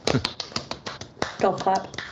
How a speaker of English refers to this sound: Golf clap.